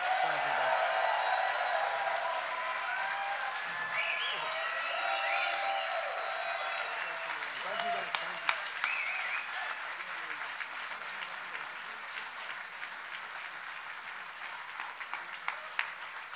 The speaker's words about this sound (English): Ladies and gentlemen, from your New York Red Bulls, from Lewisham, South East London, a massive round of applause for Bradley Wright-Phillips.